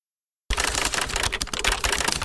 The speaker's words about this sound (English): and I apologize for this incessant typing. But it's just our Bench Talk staff furiously writing the scripts for our four-year anniversary special